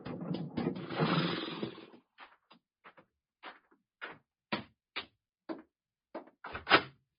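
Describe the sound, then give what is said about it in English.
The door of a roadside shack swings open without a knock with a rough, scraping rush, followed by a scattered series of sharp clicks and thuds, moderately loud, with no voices. “Ain't you learned to knock on a door, sonny?”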